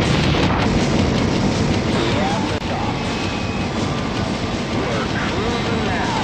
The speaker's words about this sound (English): So they load your car into the space shuttle and blast you into space, and you land on the moon.